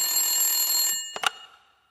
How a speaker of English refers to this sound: We like to use an old-style telephone here.